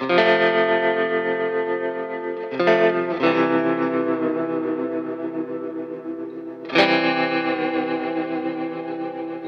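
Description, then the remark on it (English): Sustained electric guitar chords from a Strat run through a distortion and chorus effect, thick and buzzing with a warm tone, restruck a few times with sharp attacks and long ringing decays. No voices. “Oh, you can really hear the warm tones out of that Strat.”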